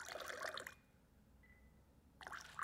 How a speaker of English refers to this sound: We have pretty cold tap water here. You do want pretty clean water. While New York City gets its water from here in this area and from our reservoirs, and it's really good, so we're just going to slowly dribble water into the glass.